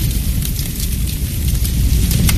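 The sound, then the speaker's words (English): A spreading household fire burns in the middle of the night with a steady, heavy roar, scattered sharp crackles and pops snapping through the rumble. It is loud, with no voices. “In the middle of the night, there are two sounds a spreading household fire can make.”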